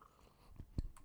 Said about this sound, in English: Sip of water.